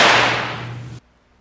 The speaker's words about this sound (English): We got the fireworks going off already.